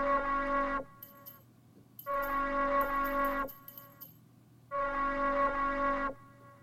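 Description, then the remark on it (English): Bells ring out in three sustained bursts, each lasting over a second with short pauses between, bright and metallic with a shimmering, rattling edge, fairly loud and with no voices. “That's when I heard the bells again.”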